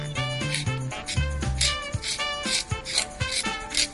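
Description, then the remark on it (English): A carrot being shaved in a decorative carrot shaver, producing little bits of carrot that resemble pencil sharpenings: squeaky, whining rasps with tonal squeals, then a run of rhythmic scraping crunches, fairly loud, with no talking. “Well, it actually does shave the carrot, and you end up with these little bits of carrot that resemble pencil sharpenings.”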